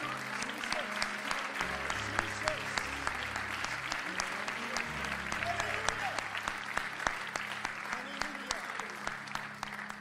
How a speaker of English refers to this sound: Let's receive him with a great hand clap of appreciation. God bless you. Praise the Lord, everyone. Let's clap again to the Lord.